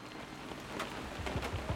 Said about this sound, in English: being up here on the second floor with all of the wind and the thunder and the rain, it's hard to tell exactly what's going on.